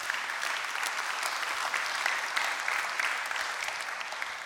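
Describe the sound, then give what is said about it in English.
Sustained applause from an audience, a dense, steady patter of many hands clapping at an even loudness for several seconds, with no voices standing out. “Round of applause, yeah.”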